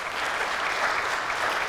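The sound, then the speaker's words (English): An audience claps steadily for people being introduced at a church gathering, a dense, even patter of many hands at a constant loud level for a couple of seconds with no voices standing out. “Clap, yeah.”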